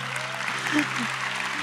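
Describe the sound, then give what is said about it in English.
An audience claps in a steady, dense wash of applause that holds at an even, moderate level throughout, with a low sustained tone humming underneath. “It's okay to clap.”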